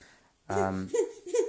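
A baby lets out a loud, sustained squeal followed by two shorter bursts of babbling, the little voice bright with no adult talking.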